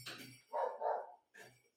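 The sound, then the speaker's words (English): A dog barks in a short burst of two or three sharp barks, the middle one drawn out and loud, with brief pauses between them and no talking. “This dog is really something else.”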